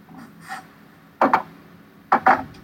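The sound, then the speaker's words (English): A cork-and-cage bottle of La Folie beer being worked open: faint rustling, then two loud, rough double scrapes as the cork is twisted and squeaks against the glass, with no pop. “You got a cork and a cage and shit?”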